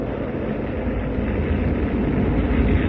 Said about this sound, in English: I want to linger for a while on the soundscape of the forest fire, so I've looped some of the sounds from the scene.